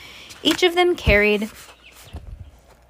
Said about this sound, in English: Oh my God, these chickens are like going nuts.